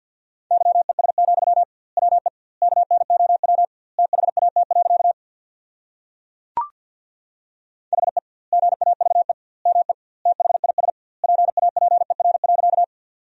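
Morse code tones sending a sentence at 50 words per minute with doubled word spacing: a steady, mid-pitched beep keyed into rapid dots and dashes, grouped into words with short gaps, plus a single sharp click midway. No one speaks.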